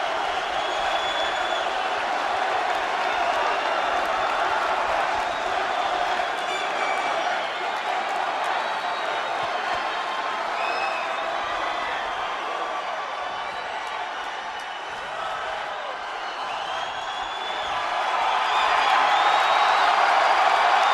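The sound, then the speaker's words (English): A large WWF wrestling crowd cheers and applauds nonstop for a returning superstar, a dense, loud roar of clapping and shouting that holds steady for about twenty seconds and swells again near the end. “This crowd really didn't. I don't want to stop cheering long enough to let the man talk.”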